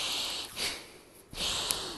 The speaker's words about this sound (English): Now moving into upper lungs, panting breath. Inhale, exhale, find your ratio.